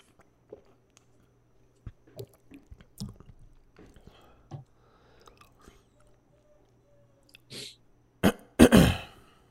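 Quiet wet chewing and mouth clicks of a person eating cottage cheese come in scattered bursts, followed near the end by a few loud, harsh coughs.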